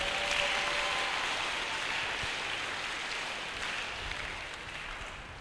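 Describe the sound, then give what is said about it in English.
A church audience claps for Jesus during a sermon, a dense, steady wash of applause that holds for several seconds and tapers slightly toward the end, with no one speaking over it. “Clap for Jesus.”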